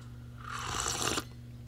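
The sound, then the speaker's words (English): A single slurping sip of Stanley pour-over coffee, a breathy, airy rush lasting under a second that swells and then cuts off sharply, over a steady low hum with no talking. “And, you know, if we, and I'll say this unapologetically, I'm going to get one more sip of coffee here before we close.”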